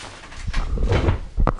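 A chair is shuffled and scraped into place, a few soft thumps and rustles ending in a sharper knock, with no one speaking.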